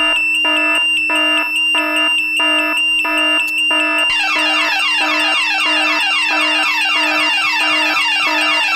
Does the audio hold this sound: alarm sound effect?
yes